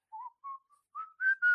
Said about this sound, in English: he walks off whistling …